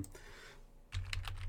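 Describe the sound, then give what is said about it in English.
Quick typing on a computer keyboard: a soft burst of keystrokes, then a louder cluster of sharp clicks over a low hum, with no voices. “Everyone loves when we do some typing here on the podcast.”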